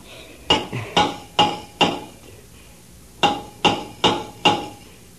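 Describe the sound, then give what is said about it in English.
A hammer raps on the metal hull of a submarine, answering the signals of a rescue diver outside, in two sets of four evenly spaced, ringing clangs separated by a short pause, fairly loud with no voices. “Take the hammer and answer the signals.”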